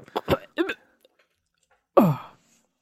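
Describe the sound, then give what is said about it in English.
A few brief throaty vocal noises, then after a pause a single short, loud burp with a falling, gravelly tone, the burp of the character Dungfang as he starts to stir. “Oh, Dungfang burps?”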